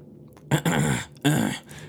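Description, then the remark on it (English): Someone clears their throat twice, close to the mic: two rough, raspy bursts in quick succession, the first longer than the second, with no talking. “You're supposed to clear your throat into the mic, right?”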